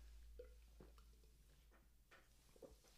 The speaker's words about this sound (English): It was, you couldn't see because this is an audio podcast, but I just took a drink of water. I'm sure they could hear it.